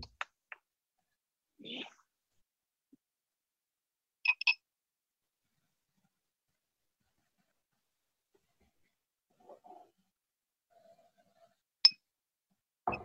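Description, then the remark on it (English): A few sharp, bright clinks of a whiskey glass holding a dark, high-proof (136.6 proof) whiskey, a quick double tap in the middle and another crisp clink near the end, separated by long quiet stretches with faint handling sounds. “A glass is getting some wear on it today.”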